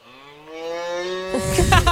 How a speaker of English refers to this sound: the cow. We were on a farm. But here's the thing. See, they were mooing no matter what, right? They were just mooing.